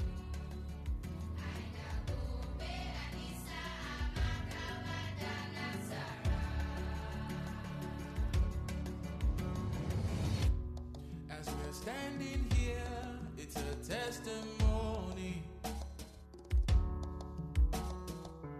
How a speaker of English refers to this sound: Let's go on a short musical break.